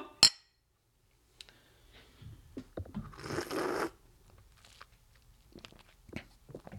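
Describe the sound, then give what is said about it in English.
A single bright clink of drinking glasses of frozen cocktail touching in a toast rings out at the start, followed by soft rustling, sipping and mouth sounds; no one speaks. “We've got a glass, and now we can cheers ourselves.”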